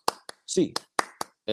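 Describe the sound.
Five sharp hand claps land in a quick UCLA eight-clap cheer rhythm, one pair separated by a brief pause, while a man's voice speaks between and after them.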